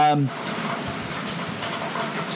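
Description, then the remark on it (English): Steady rushing noise from a microphone, hissing and crackling like pouring rain, continuing throughout after a brief voiced sound at the very start. “you can back up off the mic. Pouring rain, man.”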